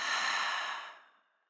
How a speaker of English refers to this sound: And as you think of that one thing, we're going to take a deep breath in and out. So let's breathe in together. Thinking of that one thing. And now breathing out.